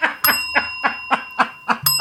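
A small bell, rung to end a discussion, rings out sharply with a lingering metallic tone, followed by a series of short rhythmic bursts, then the bell is struck again near the end.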